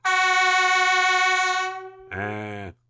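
A loud Super Echo air horn blares a steady, brassy tone for about two seconds, then after a short gap sounds again in a lower, buzzier blast that cuts off abruptly.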